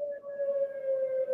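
A siren sounds a steady, sustained mid-pitched tone with faint higher overtones, holding level throughout without any voices over it.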